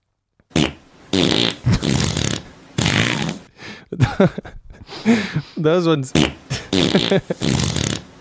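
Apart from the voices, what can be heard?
fart sound effects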